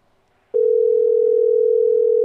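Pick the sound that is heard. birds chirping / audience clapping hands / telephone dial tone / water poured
telephone dial tone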